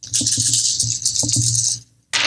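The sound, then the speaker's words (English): A rapid flurry of small hard clicks and rattles of dice tumbling and clattering across a tabletop, fairly loud, stopping briefly before another burst starts. “We got to start using the black dice as the good dice.”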